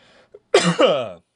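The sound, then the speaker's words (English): A person coughs twice in quick succession to clear allergies from the lungs, fairly loud, with a throaty, phlegmy rasp, preceded by a faint breath and a small click. “I'm going to cough out the allergies out of my lungs.”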